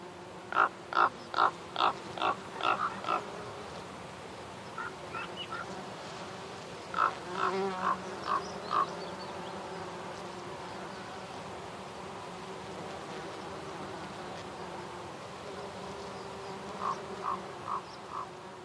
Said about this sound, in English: Although bees feature very prominently, going about their busy, busy chores.